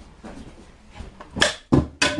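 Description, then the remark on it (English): A wooden board is broken with a hammer-fist strike: after a quiet stretch, three loud, sharp cracking impacts land in quick succession, each with a brief ringing tail. “board breaking with Isaac”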